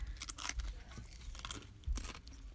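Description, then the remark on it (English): Loud, sharp crunches of chips snapping and being chewed as they are eaten with an oily artichoke dip, the chips breaking in the dip, in quick irregular bursts with bright crackly bites, and no talking. “Okay, well, first of all, the chips don't hold up to dip. They break.”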